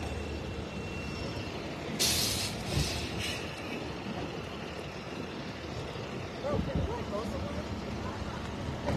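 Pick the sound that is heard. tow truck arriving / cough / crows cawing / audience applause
tow truck arriving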